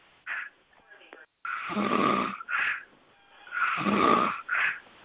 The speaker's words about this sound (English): That motherfucker breathing hard as hell over there snoring. Hey, white guy, pinch your boyfriend so he can stop snoring.